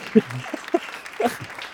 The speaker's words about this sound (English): Can I get an applause?